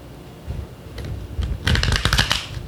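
A deck of tarot cards being shuffled once in an apartment, with a soft riffle building into a dense burst of rapid, crisp card flutters before trailing off.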